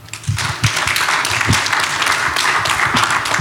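An audience breaks into applause, a dense, steady wash of many hands clapping that swells in quickly and holds at a loud, even level throughout.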